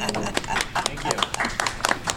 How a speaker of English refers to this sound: Quick round of applause for our panelists.